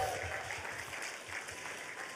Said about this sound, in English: And so, with that being said, let's give them one more round of applause so I can transition.